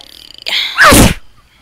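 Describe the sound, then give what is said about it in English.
A single loud sneeze: a short rising intake of breath bursts into a sharp, explosive blast that fades quickly into quiet. “Bless you. Bless you.”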